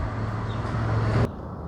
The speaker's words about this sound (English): Let's wait for this truck to go by.